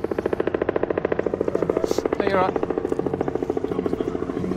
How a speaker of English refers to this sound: The chopper, eh? Wow.